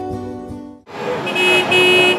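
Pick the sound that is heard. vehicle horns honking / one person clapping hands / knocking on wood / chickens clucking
vehicle horns honking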